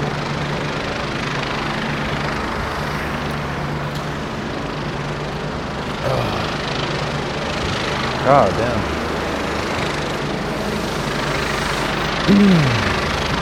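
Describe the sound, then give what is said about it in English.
A steady, loud engine drone with a low rumble, like a helicopter overhead, sits over a constant wash of road traffic. A voice briefly speaks a couple of times. “Let's just roll on some helicopter. The helicopter and traffic.”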